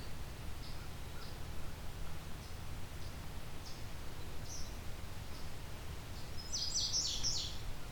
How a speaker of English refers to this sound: Some eastern kingbird squawking here too, but not very prominent.